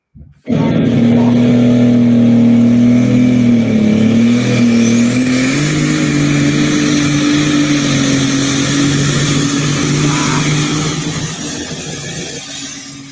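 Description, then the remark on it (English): A pulling tractor engine roars loud and steady during an exhibition hook pass, its deep droning pitch climbing slightly partway through before the sound begins to fade toward the end. No one speaks. “I've never seen a tractor go from yellow to green.”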